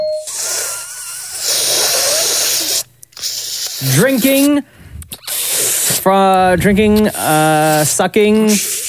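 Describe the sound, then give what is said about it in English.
A voice imitates sucking through a straw: a steady, airy slurping hiss for about three seconds, followed by short bursts of excited vocal sounds from people. “Oh, sucking through a straw! Yes.”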